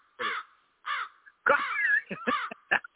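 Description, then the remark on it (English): A crow caws repeatedly, harsh calls in an uneven series, a few drawn-out and the rest short and clipped, loud with no talking. “I wanted to hear that crow.”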